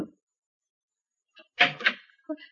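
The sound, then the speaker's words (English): A couple of sharp knocks on a wooden stateroom door, fairly loud, followed by a softer tap after a brief pause, with quiet stretches around them. “I'm anxious to get moving anyhow, so even though it's pretty early, I go down and knock on her stateroom door.”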